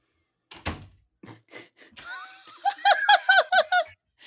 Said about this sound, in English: Sorry, buddy. Can you close the door? Thank you.